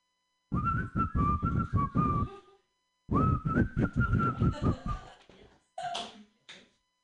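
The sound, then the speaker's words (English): A person whistles two long, wavering phrases at a steady high pitch, fairly loud, with a rhythmic pulsing beneath, followed by a brief lower-pitched burst of sound. “Can you whistle? Who can whistle here?”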